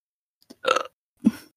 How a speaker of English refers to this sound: That was a bad burp.